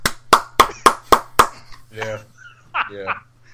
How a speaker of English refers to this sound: Sorry, I didn't realize how loud my clapping was.